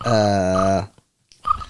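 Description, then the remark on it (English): A person voices a low, croaky, buzzing imitation of a cricket chirp, one sustained loud burst that sounds almost like a burp, then silence and a brief rougher second attempt. “He's trying to do a cricket.”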